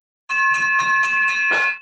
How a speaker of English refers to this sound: Woo! You have been waiting for that victory bell.